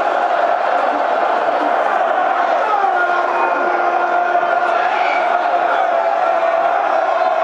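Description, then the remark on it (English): A large football stadium crowd roars steadily after a close-range goal makes it 2-1, a dense wall of cheering and shouting that holds loud and sustained throughout, with scattered whoops and chanting rising out of the din. “Tapped home by Duncan Watmore, 2-1. It's got the crowd on its feet.”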